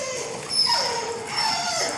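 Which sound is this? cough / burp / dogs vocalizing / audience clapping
dogs vocalizing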